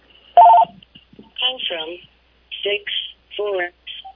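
A bell rings to signal that time is up: several short bursts of bright, electronic-sounding tones, moderately loud, repeating across about four seconds with brief gaps between them.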